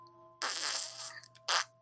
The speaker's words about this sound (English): I'm casting Minor Illusion, centered on him, to make a sound like he is just a loud, wet fart after that.